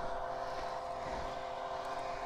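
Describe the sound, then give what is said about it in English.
A very tiny scrambler-style motorbike crossed with a moped comes up from behind on the Ricken Pass route, its engine droning steadily, a continuous buzzing motor note holding at a fairly even loudness with no voices. “Something's coming up behind us. What's this? Oh, it's like a very tiny scrambler bike crossed with a moped.”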